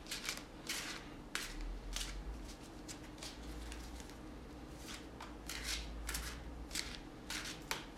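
Repeated crisp riffling and soft slapping of a deck of cards being shuffled, in irregular bursts over a low steady hum, with no one speaking.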